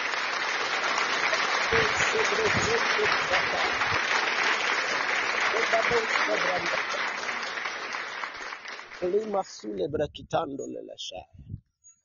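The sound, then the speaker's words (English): An audience at a worship service claps a clap of faith unto the Lord in a dense, sustained burst of applause lasting about nine seconds, then it thins out as a voice begins speaking over the last scattered claps. “Give a clap of faith unto the Lord.”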